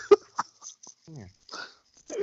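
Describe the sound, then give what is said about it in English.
A dog gives two sharp barks in quick succession, followed by quieter whining and huffing sounds, then another short bark-like burst at the end. “Get the dog!”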